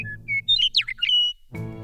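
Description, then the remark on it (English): A Western Meadowlark sings a bright, bubbling phrase of clear whistled notes that slide and warble, loud, before a low voice begins at the end. “Robin-sized, Western Meadowlarks are mottled white and brown on their upside, and breeding-age birds have brilliant, bright yellow undersides with a sharp V on the chest.”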